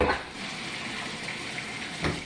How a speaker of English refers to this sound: That's the shower.